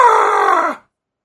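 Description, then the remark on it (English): A single loud, rough guttural scream from the wrestler Vader, held for under a second with a harsh, strained tone before its pitch sags and it cuts off into silence. “I heard that fucking guttural scream.”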